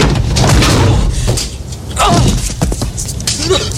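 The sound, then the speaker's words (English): A person slams hard into a door with a loud thud and rattle, followed by a few scuffling knocks and shuffling noises as things settle. “It looked real painful when you slammed into it.”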